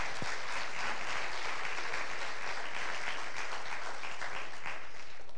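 A church crowd applauds steadily for a missionary in Ecuador who is graduating from K-State with a master's degree. For about five seconds there is a dense wash of many hands clapping at once, with no voices rising above it, holding fairly even before easing slightly at the end.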